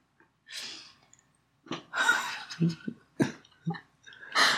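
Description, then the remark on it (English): A series of breathy exhales, a person puffing air out in several short irregular bursts with brief pauses between them, breathing out into another person's nose so they can smell the breath; some puffs are rougher and almost voiced. “Just like, let me stick my schnoz in your mouth and breathe.”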